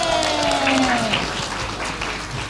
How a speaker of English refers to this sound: And a round of applause! Yay!